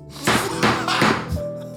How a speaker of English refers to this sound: There is so much gaveling to do. Order.